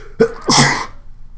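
A single loud sneeze: a short voiced intake followed by a sharp, breathy explosive burst that fades quickly into quiet. No talking.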